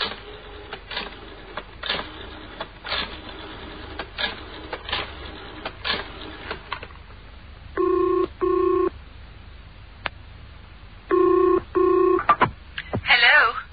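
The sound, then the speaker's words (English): A telephone being dialed to ring a factory, Craig's Frozen Foods, with bursts of sharp mechanical clicks, followed by two double rings of the line ringing, with no one speaking. “I'd better ring the factory before it closes.”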